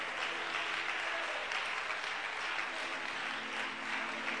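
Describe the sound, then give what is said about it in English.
An audience at a morning church service claps their hands together in praise, a steady, dense wash of applause that stays loud and even throughout, with no voices standing out above it. “If you're really glad to be in God's house, why don't you give him a hand clap of praise this morning?”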